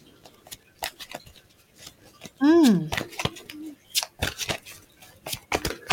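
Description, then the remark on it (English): Tarot cards being shuffled during a tarot reading, a run of crisp, irregular papery snaps and flicks, with a short rising-and-falling vocal tone partway through. “And what I'm doing is I'm shuffling the cards away, and I'd just like you to let me know when to stop shuffling, and we'll see what comes up.”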